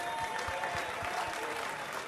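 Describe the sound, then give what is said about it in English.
A large crowd at Twins Fest applauds steadily, a dense wash of overlapping claps that holds at an even, fairly loud level for a couple of seconds, with a faint murmur of voices underneath. “So nice to see this crowd.”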